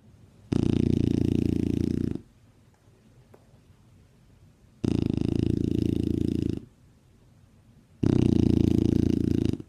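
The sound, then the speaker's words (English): A rescued dog snores and grunts contentedly in three long, rumbling bursts with short quiet gaps between, each breath a steady, fairly loud grinding drone. “And what about Reuben? Is he happy? We'll let him have the last word.”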